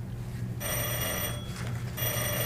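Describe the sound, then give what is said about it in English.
A bell rings in bright, sustained metallic bursts after a brief quiet start, with a short dip partway through before ringing again, over a low steady hum with no talking. “And that's the final bell.”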